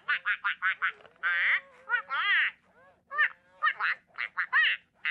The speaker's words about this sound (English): Yeah, and what that was kind of the duck being a little apprehensive. And one of the really cool things about the duck speaking in quacks is that it allows children to project language onto the duck.